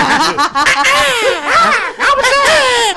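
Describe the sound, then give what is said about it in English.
A person imitates a hawk's screech with a run of loud, raspy cries that rise and fall in pitch across about three seconds, with brief gaps between them. “Let me introduce you to the hawk.”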